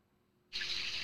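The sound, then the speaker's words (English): After a brief silence, running water suddenly switches on and continues as a steady hiss, like a shower spraying. No voices are heard. “So, the first pitch I got is, are you taking a shower?”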